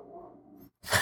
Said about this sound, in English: Your dog's back. Yep, there he is.